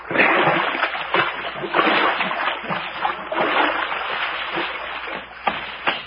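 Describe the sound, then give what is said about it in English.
Repeated splashy, squelching steps slosh through shallow muddy creek water at an uneven walking pace at twilight, fairly loud, with no talking. “Oh, boy, it feels good to get my toes out of this mush.”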